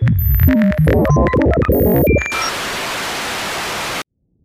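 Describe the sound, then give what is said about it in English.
Garbled, warbling electronic bleeps and tones of an incoming transmission break up for about two seconds, then give way to a loud, steady hiss of radio static that cuts off abruptly. No voices. “Get some kind of like interference, like a transmission that's coming through.”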